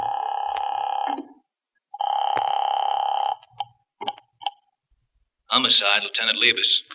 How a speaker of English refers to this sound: What are you doing now? Calling that number. It might be a lead.